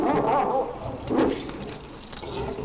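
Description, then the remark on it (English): Dogs bark in a couple of short, yelping bursts, moderately loud, with a noisy background between them and no one talking. “The ghost dogs continued to bark and patrol the area behind the house.”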